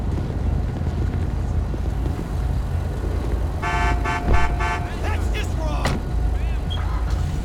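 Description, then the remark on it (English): A car horn honks in a quick burst of four or five short, loud blasts over a steady engine rumble, followed by a few brief rising electronic chirps. “On the siren and the horn.”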